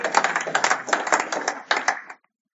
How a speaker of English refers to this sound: That deserves a round of applause, because that is amazing.